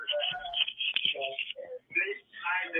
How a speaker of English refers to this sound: Can you mute the TV or your phone? Okay, I'll turn down the TV.